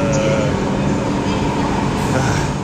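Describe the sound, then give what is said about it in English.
Busy train station platform ambience at Omiya station in Japan, around 9:50 p.m.: a dense, steady wash of rumble and hiss, fairly loud throughout, with a faint murmur of indistinct voices mixed in. “And in my last segment at Omiya station, I was recording some Insta story.”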